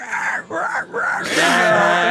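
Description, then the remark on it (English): A person imitates a squealing pig: a few strained, wavering vocal grunts and moans that break into a loud, shrill, raspy squeal held to the end. “By the way, I never thought I was ever going to hear a pig either being like murdered slowly or like or being born at the same time.”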